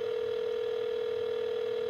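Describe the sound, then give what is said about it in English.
A steady, unbroken telephone tone hums at a moderate level for the full two seconds, like a line being dialed or waiting to connect, with no voices present. “Let's give her a call.”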